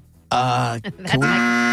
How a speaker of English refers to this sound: She loves it. No, you're not. You love the buzzer. There we go.